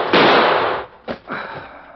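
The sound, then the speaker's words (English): Two gunshots fired by Sheriff Cheney at Cal Borger in Red Creek ring out, the first a loud blast with a long rumbling tail, followed about a second later by a sharper, quicker crack that fades into a softer echo. “Two shots right through the heart.”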